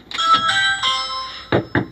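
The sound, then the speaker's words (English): A doorbell at the front door of a home in Charlotte chimes in the afternoon with ringing electronic tones that hold and fade, followed by three quick, firm knocks on a door. Clear, with no voices. “And while no one was home when I rang the doorbell this afternoon, a neighbor did tell me this morning they spotted CMPD outside this person's home.”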